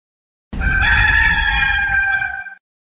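A single rooster crows, a loud, drawn-out cock-a-doodle-doo lasting about two seconds with a bright, strained tone, heard alone over a faint low rumble before it cuts off.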